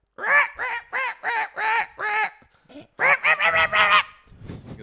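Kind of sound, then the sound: vocal imitation, imitated bird call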